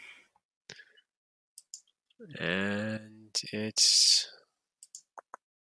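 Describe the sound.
Several sharp, quiet mouse clicks land sporadically as someone opens a dice roller program, with a short cluster near the end. A brief spoken word and a breathy exhale interrupt them midway.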